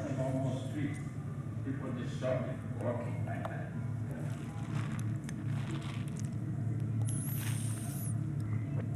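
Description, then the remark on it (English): A busy city street in Nairobi, Kenya hums with steady traffic rumble and a dense wash of indistinct voices from crowds, with a brief high-pitched squeal rising near the end. “here's just a little glimpse of a city, a street in Nairobi.”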